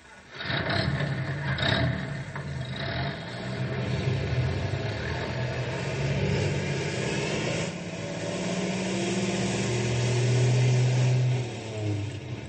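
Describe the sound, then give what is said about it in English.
A rescue truck engine turns over and settles into a steady, rumbling drive, with the motor's low growl rising and swelling as it picks up speed, fairly loud with no voices. “you fellas drive the other rescue truck. Henry and I'll take this one. All right, let's go.”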